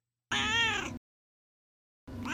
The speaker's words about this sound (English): Now it's time for Duarte's Corner, where my cat Duarte will give his opinions about the book.